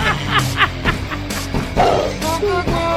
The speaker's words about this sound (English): That's a screaming pug right there.